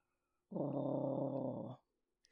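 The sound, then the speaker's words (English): A deep, resonant rumbling purr from a creature, coming from the middle of its body rather than its mouth, swells up suddenly, holds steady and loud for just over a second, then cuts off into near silence. “because these are like deep resonant sounds coming out. Definitely not from where the mouth would be.”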